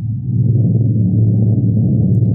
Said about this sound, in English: There were fearful storms over the city.